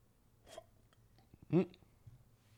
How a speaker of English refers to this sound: That could have been really bad. I just hiccuped while I was sipping, but I hiccuped right before I actually sipped. Because if I would have already had the tea coming in my mouth and hiccuped, I would have choked on the podcast.